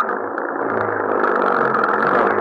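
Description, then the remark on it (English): A car engine starts and runs loud, a steady rumbling roar that swells slightly as it revs, with no voices over it, in the hills as a storm gathers. “Get the car started. All right. All right, get inside. Maybe it'll go now.”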